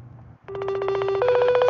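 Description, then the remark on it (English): A telephone ringback tone on an outgoing call starts after a brief pause, a close, fairly loud warbling buzz that steps up slightly partway through, over a low background hum with no talking. “If they pick up the phone, you know what I mean?”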